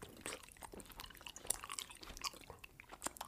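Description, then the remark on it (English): Loud, wet chewing of raw honeycomb, with irregular crackly bites and smacking mouth sounds repeating quickly, no one speaking. “You eat so loud.”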